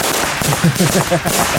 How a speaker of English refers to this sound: Oh no! What is that? Firecrackers, right?